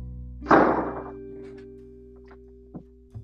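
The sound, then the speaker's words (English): A door shuts with one solid, low thunk that rings out briefly, followed by a couple of faint light taps over a steady low hum. “I'm shutting your door.”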